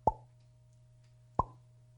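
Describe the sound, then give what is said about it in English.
Two crisp water drips played as a sound effect, each a short plop with a bright ringing ping, spaced more than a second apart over a low steady hum, with no talking. “So one drip per second can waste more than 3,000 gallons of water per year, mm-hmm.”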